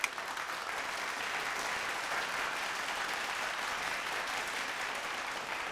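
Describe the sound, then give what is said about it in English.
Sustained applause from a crowd for Fred Rogers, a dense, steady wash of clapping that holds even in loudness for several seconds without any voices rising above it. “Ladies and gentlemen, can we just all give it up real quick for Fred Rogers?”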